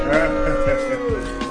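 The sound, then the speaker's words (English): A studio audience boos loudly at someone's return to the show, a sustained chorus of drawn-out, low-pitched voices wavering together for about a second and a half without any clear words. “People seem to be very upset that Jamie's back.”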